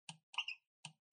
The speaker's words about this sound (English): Just because rolling dice is fun, even though I'm not the one rolling them.